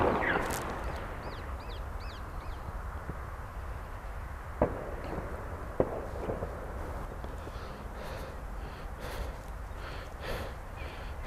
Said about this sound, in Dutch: Het is oudejaarsdag. Er zijn allemaal rotjes in de achtergrond. Net als een oorlog.